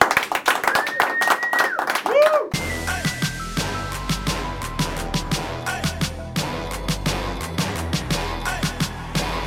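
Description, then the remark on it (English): An audience claps in steady unison, sharp repeated claps keeping a regular beat over a low, droning backing sound. A brief burst of voices and tonal sound comes just before the clapping starts. “Let's clap it up.”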